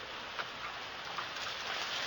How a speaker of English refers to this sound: That afternoon, it rained so hard I couldn't see more than a few feet in front of me.